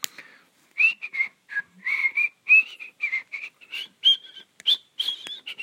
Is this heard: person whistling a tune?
yes